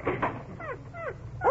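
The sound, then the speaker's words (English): A dog whimpers, wanting to go out: three short, high whines that slide downward in pitch, following a couple of soft scuffling thumps at the start. “Come, Fifi, fetch. Oh, look. Look, she wants to go out.”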